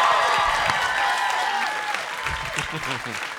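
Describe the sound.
A concert crowd claps loudly and steadily for the band's manager, who is coming out to perform for the first time in 12 years, a dense wash of hands that holds strong for a few seconds and eases slightly toward the end, with a few cheers and voices mixed in.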